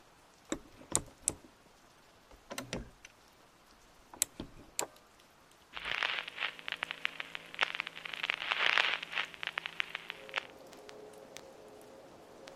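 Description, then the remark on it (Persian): Rain falls steadily on a rainy afternoon with scattered sharp drips and taps, growing into a denser, louder patter midway before easing off again. No one speaks. “عصر روز بارانی است.”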